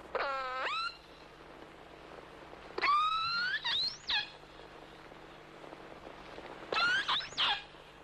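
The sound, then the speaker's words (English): Killer whale calls underwater: three bursts of bright, harmonic squealing whistles that sweep up and down, separated by pauses over a low steady hum, with no voices. “to sit on the ice edge as, for instance, killer whales pass by and record their sounds, their feeding activities, and whatnot.”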